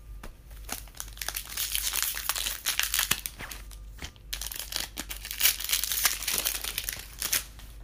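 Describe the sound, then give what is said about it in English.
Crinkling plastic wrapper of a card booster pack being torn open, a continuous stream of bright crackling and rustling bursts with a short pause midway, no voices. “So after this, these 2 packs will be like another short break, and then I'll open up the last 12.”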